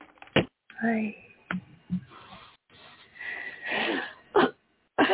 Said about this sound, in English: Oh, and I coughed again on the air. What I'm doing is I'm clearing my throat.